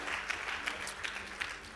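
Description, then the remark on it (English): An audience applauds steadily, many hands clapping together in a dense, continuous patter with a few sharper claps standing out, moderately loud and without any talking. “Clap that we're back home.”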